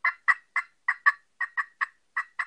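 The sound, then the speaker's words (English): A run of about ten sharp, high-pitched turkey yelps from an anodized Ninja slate friction call, evenly spaced in a quick steady rhythm, clear with no talking. “my favorite is the anodized Ninja and slate, because it's got that higher pitch, and you can get turkeys located with it good”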